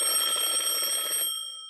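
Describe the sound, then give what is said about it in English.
An alarm clock rings loudly, a rapid metallic rattling bell that runs for just over a second, then cuts off and leaves a brief fading ring. “Eventually, the library staff got so exasperated that they just gave him an alarm clock and a bed and let him sleep there.”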